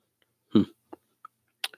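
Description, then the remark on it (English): A single short, low burp, followed by a few faint mouth clicks and breathy noises in otherwise quiet surroundings. “I just, you know, a little burp there. I don't know if you heard that.”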